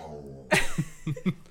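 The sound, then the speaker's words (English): A dog growls: a low rumble gives way to a sudden gruff huff, then three short throaty grunts in quick succession, with no talking. “Are you disagreeing? Do you not like that?”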